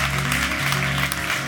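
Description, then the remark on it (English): An audience claps in a steady, dense wash of applause that holds at an even level throughout, with a low sustained musical tone humming underneath. “I'm gonna let y'all clap if you want to, because I feel like you should.”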